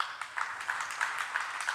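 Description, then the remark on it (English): Scattered applause from about a third of an audience, a light, steady patter of clapping hands that never builds into a full ovation, as the crowd answers whether they got a chill when the Putty Man was talked about. “I'm going to ask the whole crowd and applaud if this is true, because I'm not going to lie.”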